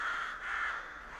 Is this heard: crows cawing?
yes